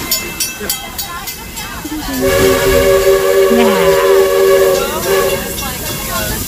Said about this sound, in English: I think I found a little train whistle. Here we go.